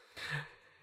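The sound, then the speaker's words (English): A single heavy, breathy huff from one of two heavily panting bulldogs at a person's knees, a short rasping exhale with a low snorty undertone that swells and fades within half a second, with no voices. “Two heavily panting dogs right at my knees.”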